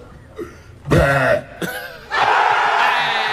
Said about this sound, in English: That was a strong burp. Excellent burping action there. But yeah, he obviously did a really loud one.